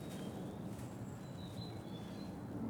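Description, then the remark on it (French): Birds give thin, high whistling calls, a few short chirps drifting over a steady low outdoor rumble, with no one speaking; the birds are starting to wake up as if it were already spring. “Le bruit, les oiseaux... Maintenant, ils commencent à se réveiller déjà.”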